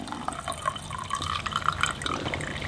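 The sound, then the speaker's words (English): Medium roast coffee from an American press coffee maker pours steadily into a cup for a few seconds, a continuous splashing trickle with faint rising gurgles as the cup fills. “I give you a good shot of it.”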